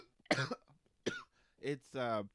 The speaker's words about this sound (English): I feel like you're gonna give a lot of listeners PTSD with your cough. People are gonna like just not want to hear it.